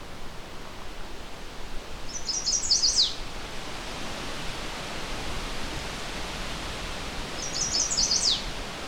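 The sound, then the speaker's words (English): A single warbler, not very far away, sings two short, high, rapid phrases, several seconds apart, clear above a steady rushing background like running water. No one speaks. “The song has a lot of similarities with yellow warbler and magnolia warbler.”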